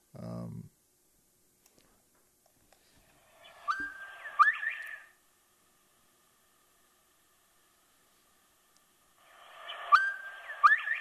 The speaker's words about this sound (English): Sounds like the bird is saying Bob White. Yeah. That's where they get the name from, Bob White Quail. And so people love that sound.